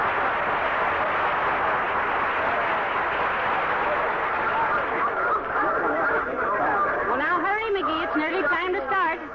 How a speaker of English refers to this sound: Crowd.